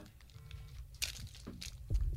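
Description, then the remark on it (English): A Milky Way candy bar wrapper being peeled open: a few short, crinkly plastic rustles and crackles over a low background rumble, with no talking. “I was just handed a Milky Way. Oh, the crap one. Eat it.”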